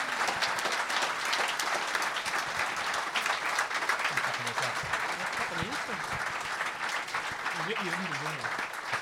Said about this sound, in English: Thank you all very much. More applause for our panelists.